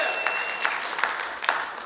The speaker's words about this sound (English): We're gonna make it. This church, we're gonna make it. It's okay, you can clap.